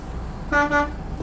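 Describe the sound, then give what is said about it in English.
Two short horn toots in quick succession, a bright harmonic honk from a truck at a truck driving school in Mission Valley, followed by quiet background rumble. “A little blow on the horn there.”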